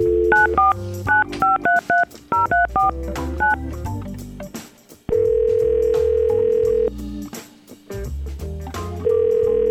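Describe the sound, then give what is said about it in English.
A quick run of touch-tone dialing beeps as a phone call is placed, a brief pause, then a long steady ringback tone on the line, repeating after a gap. Clear, with no voices. “So I'm excited to hopefully get him on the phone and maybe we can make this connection for her.”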